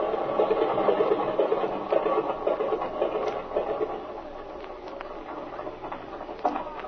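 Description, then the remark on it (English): An airplane engine idles with a steady, rattling chug as the pilot is told to cut the switches, its clatter easing slightly toward the end but still running. No voices are heard. “All right, cut your switches, kid. The engine's cool enough.”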